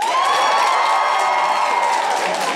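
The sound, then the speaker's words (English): A live audience cheers loudly and steadily for a few seconds, a dense wash of many voices whooping and shouting together with a little clapping mixed in, cheering when asked to cheer if they think the speaker is taller. “If you think I'm taller, cheer.”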